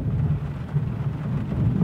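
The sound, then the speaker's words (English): Steady rain drums on a roof in a continuous, dense patter with a deep low rumble underneath, even in loudness, with no voices. “A bit of rain on roof getting mentioned.”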